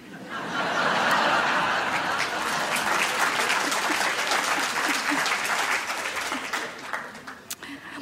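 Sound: audience clapping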